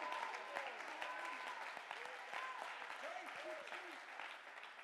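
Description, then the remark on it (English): An audience claps steadily and loudly, with overlapping voices calling out and shouting in praise throughout, forming a dense, lively crowd sound. “Clap your hands and give him praise. Somebody shout.”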